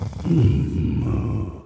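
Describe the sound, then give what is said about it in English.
A person imitates a tiger's purr with a low, rumbling, gravelly growl from the throat, sustained for under two seconds at steady moderate loudness, with no words spoken. “can you do a tiger? It's amazingly deep. It's like that, like, really deep purr.”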